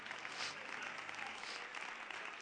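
An audience claps their hands to the Lord in praise before being seated, a dense wash of many hands applauding together at an even level throughout, with no voices standing out above it.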